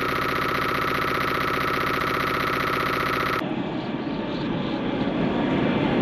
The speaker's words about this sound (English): Yeah. Some wind. Some lasering. Monkey. A monkey. Like, what the hell? Yep, a chimpanzee of some sort.